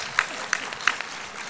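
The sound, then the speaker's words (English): Scattered audience applause: a few sharp, separate claps spaced irregularly over a soft, steady wash of background noise, fairly quiet overall, with no one speaking. “And how many of you who just applauded were able to succeed and get it done anyway?”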